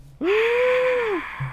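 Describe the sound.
A single drawn-out vocal gasp, like a studio audience's shocked intake of breath, imitated by one voice, rising then holding steady for about a second before trailing off, loud.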